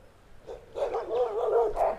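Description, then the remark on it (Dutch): A dog at a house barks and yelps excitedly at another dog passing by, in a rapid, continuous run of high, whining calls, with no talking. “En bij sommige huizen zijn honden heel erg actief wanneer er een andere hond voorbij komt.”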